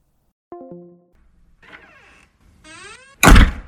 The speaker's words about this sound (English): I know my door did not just open and slam shut after I finally had a calm moment. I am gonna lose it if the door is locked.